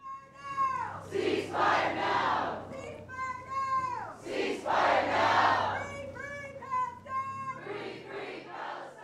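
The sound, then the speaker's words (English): A crowd of about 150 at a rally urging a ceasefire in Gaza chants loudly outdoors at the Marine Park gazebo in downtown Juneau, Alaska, on a cold Saturday afternoon. Many voices shout the same short phrase again and again in a steady, rising-and-falling rhythm with brief breaks between repetitions. “More than 100 people gathered in downtown Juneau Saturday afternoon for a rally”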